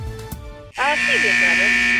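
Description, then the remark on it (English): A loud, harsh buzzer cuts in abruptly after a moment of quieter sound and blares steadily to the end, with a voice speaking over it. “If you couldn't hear it through the buzzer.”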